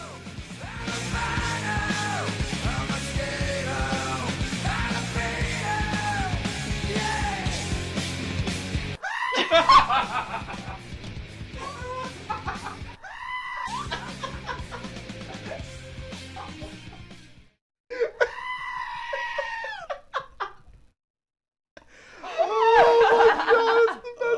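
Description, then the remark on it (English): A loud rock song plays while a goat's shrill, wavering screams cut in where the vocals should be, the music dropping out briefly between bursts of bleating. “I fucking love goats.”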